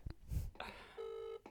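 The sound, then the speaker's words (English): A phone's ringback tone sounds a single steady electronic burst of about a third of a second, fairly quiet, following a few muffled thumps and rustles with no one talking. “It's still ringing, guys, if you can hear that.”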